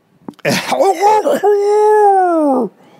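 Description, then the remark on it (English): A single person vocalizes a creaky, groaning sound followed by a long sustained moaning wail, a voice imitating a house coughing and creaking, loud, with no other talk. “That's one of my better impressions is a house cough.”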